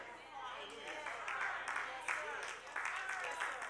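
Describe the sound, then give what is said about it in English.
Scattered, uneven clapping from an audience, a few hands beating out of sync at a moderate level, with voices murmuring underneath throughout. “Y'all are clapping hesitantly, but that's okay.”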